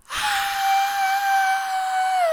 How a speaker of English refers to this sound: The screaming horse is screaming.